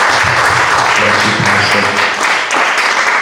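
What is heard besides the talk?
audience applause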